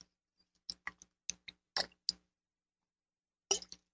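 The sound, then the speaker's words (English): Someone sips tea from a cup in a few quick, quiet slurps with light clinks of china, irregularly spaced, then a pause before one last sip. No one speaks. “Ooh, had to take a little tea there.”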